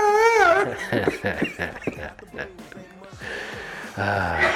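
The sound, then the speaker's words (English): A man imitates a quarterback crying in pain: a wavering, high whimpering wail at first, then a run of ragged, gasping, strained breaths and sobs, ending with another loud burst of moaning. “Doing the constant in pain breathing.”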